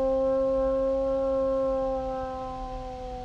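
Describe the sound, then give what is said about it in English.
Voices imitate a long, sustained howl, a steady loud wailing tone that sags slightly in pitch and fades a little toward the end, with no talking. “And we're going to howl.”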